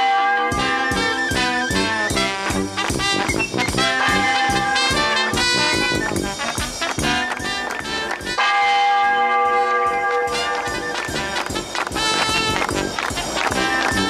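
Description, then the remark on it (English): Church bells peal loudly and continuously, overlapping strikes ringing in a rapid, clanging rhythm with rich lingering tones that fill the whole stretch without a pause. “Ring out the church bells.”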